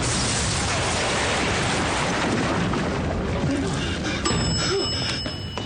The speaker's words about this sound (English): Daddy's coming home! Which means a very big explosion!